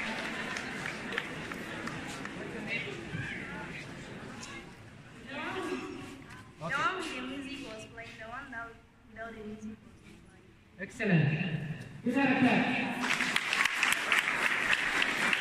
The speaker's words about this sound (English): Give her a clap. Give her a clap for our sister. Stand up.